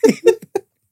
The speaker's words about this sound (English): You used to get the belch off the gas. Yeah, man, that's it. Just a burp off the gas. Cause you ain't getting no food to eat. So you know there's tons of gas.